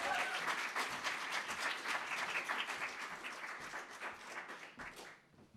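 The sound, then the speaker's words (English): An audience at a storytelling event applauds as a storyteller is introduced, with dense, steady clapping that holds strong for several seconds, then gradually thins and fades out near the end. No one speaks over it. “big round of applause.”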